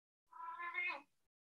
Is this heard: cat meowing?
yes